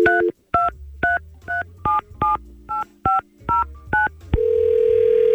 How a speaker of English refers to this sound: We're going to try and get him on the phone. Let's give him a call.